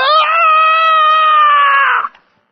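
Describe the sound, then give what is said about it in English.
A voice imitates a child's distressed scream, that of a boy who could not stop his bike while riding down a hill: one loud, sustained, high-pitched wail held steadily for about two seconds before breaking off abruptly, with no other sounds around it. “But we heard this scream that did not sound like a joyful scream.”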